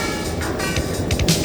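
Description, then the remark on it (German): A car drives on faster with a steady engine and road rumble that fills the whole moment, broad and continuous, with no voices over it. “Dann fahren Sie schneller.”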